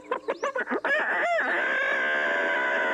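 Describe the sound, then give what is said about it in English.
A man's voice imitates a chicken, with a quick burst of sharp clucks followed by a long, loud, drawn-out rooster crow that fills the rest of the moment. “Cowboy chicken.”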